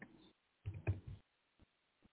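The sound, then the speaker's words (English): Soft clicking of typing a chat message on a computer keyboard: a quick burst of keystrokes, a longer flurry, then two isolated taps, fairly quiet with no voices. “I'm still, typing in the chat as we close the show. I'm typing one more message.”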